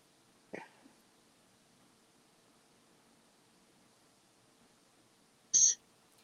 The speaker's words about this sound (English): Okay, at the last, hang on a second, I just need to clear my throat.